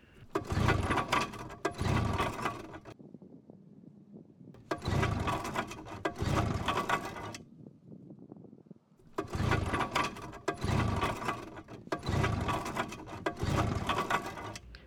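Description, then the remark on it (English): A boat motor is cranked again and again: loud, rattling bursts come in clusters of two or three, separated by short lulls of low, uneven rumble, with no talking. “Utilizing all my technical and mechanical skills, I determine that our only course of action is to try to start this poor excuse for a boat motor one more time.”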